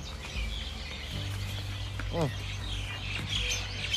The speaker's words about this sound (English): Listen to these birds. It's actually quite nice here.